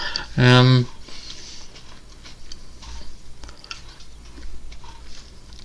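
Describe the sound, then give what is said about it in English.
A short voiced hum near the start, then faint wet clicks and mouth noises of someone chewing and swallowing a grape, with no speech. “Sorry, was swallowing a grape.”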